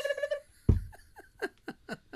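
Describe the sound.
A person mimics a turkey's gobble: a fast warbling burble, then a string of short, throaty, descending yelps spaced out in a loose rhythm, moderately loud, with no other talking.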